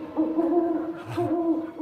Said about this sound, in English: 'Twas only an owl.